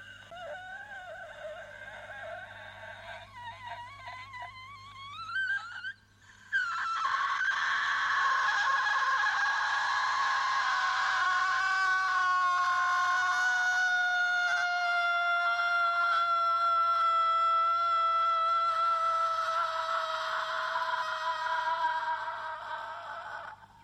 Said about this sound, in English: So the bit about her final scene... Uh-huh. Her scream... Yes, her metal scream. Crazy long. How does she project for that long amount of time?